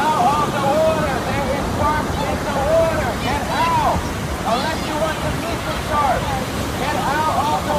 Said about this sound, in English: This was the scene at Rockaway Beach in New York during a shark sighting.